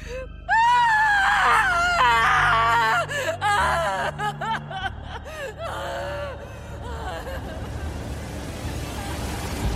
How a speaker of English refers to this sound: The crickets, the frogs, and finally, my terrified, heartbroken screaming.